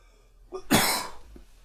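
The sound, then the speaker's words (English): A single harsh, raspy cough bursts out after a faint catch of breath from inhaling cannabis smoke, then trails off into quiet breathing. No one speaks. “I'm choking on the terps.”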